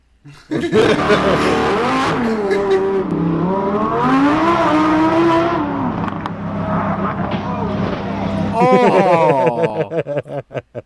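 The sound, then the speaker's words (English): A car engine revs loudly, its pitch climbing and dipping in long sweeps, then a sharp burst of acceleration near the end gives way to choppy, pulsing engine noise. “Does anybody buy a nice car and drive it properly?”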